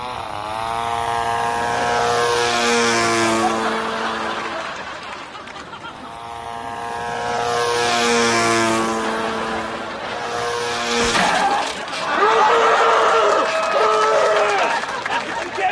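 A propeller airplane roars low overhead, its loud droning engine swelling and fading in two passes, followed by a rougher burst of engine noise.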